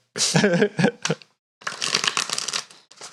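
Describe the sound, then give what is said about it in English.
Shuffling of a Thoth Tarot deck, shuffled hard before a reading: two brisk bursts of riffling and papery slapping separated by a short pause, fairly loud and with no talking. “Shuffling it good and hard.”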